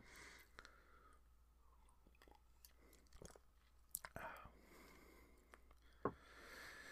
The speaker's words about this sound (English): As I take a sip of tea.